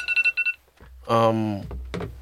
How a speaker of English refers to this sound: Wait, what's going on here? Oh, just the timer.